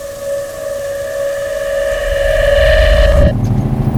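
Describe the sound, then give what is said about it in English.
A loud, steady mechanical whine rides over a deep engine rumble that builds and grows heavier, then cuts off abruptly near the end, from a dump truck used for trash collection. “I didn't realize trash trucks were so loud.”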